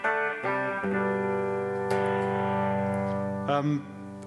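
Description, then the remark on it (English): An electric guitar played through a distortion pedal plays a few loud, sustained chords, changing shape several times and ringing out thickly before a brief final flourish, with no voices over it. “But essentially, I've got two different distortion pedals that can give different sounds.”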